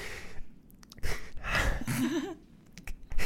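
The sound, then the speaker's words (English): Heavy, theatrical breathing from someone starting a dramatic monologue: several loud, ragged breaths with a drawn-out, voiced sigh in the middle, building and ending on a sharp inhale. “It's the breathing.”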